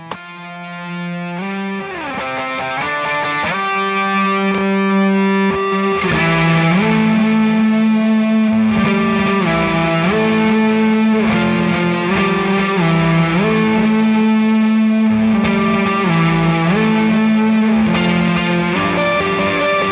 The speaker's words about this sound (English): The amp is breaking up a little bit because the amp was cranked a little, but most of this distortion is from the pedal.